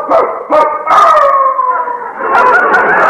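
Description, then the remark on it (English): A dog that has broken out of a neighbour's backyard howls on a front porch in long, wavering tones that slide downward, broken by a few sharp yips, loud with no talking over it. “Wolf broke out of the Dentons' backyard, and he's on our front porch this very minute.”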